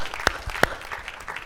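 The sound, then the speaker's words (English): Audience applause at the PAUSE Festival, the audience clapping for themselves for being there: a dense patter of many hands clapping steadily, with two sharper, louder claps standing out early on, and no voices over it. “So first off, give yourselves a big clap for being here, and thank you and welcoming you to the PAUSE Festival.”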